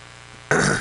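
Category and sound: human body sound, fart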